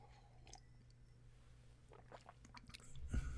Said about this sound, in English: Deep breath, and I need another sip. This is ice water with a lot of lime juice in it.